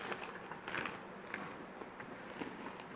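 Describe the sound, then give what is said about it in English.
Crunching as someone bites into crisp fried lumpia, a dense series of sharp crackly bites and chews over about three seconds with no talking. “How's that crunch, my That's friend? That's the fucking badass lumpia, bro. Crunchy.”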